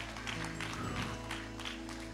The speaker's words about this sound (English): Give him a praise clap this morning. Come on, can we give him one clap?